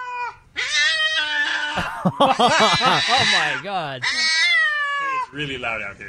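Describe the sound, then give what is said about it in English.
A cat yowls loudly in long, wavering, rising-and-falling cries that barely pause, alarmed at seeing a new puppy being brought into the house, while a person briefly exclaims over the noise. “The cat sees the guy is meowing, all of a sudden sees the dog, and that's when it goes, holy crap.”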